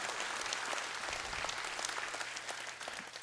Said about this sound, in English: And so as we close, we can clap about that. You can get excited about that.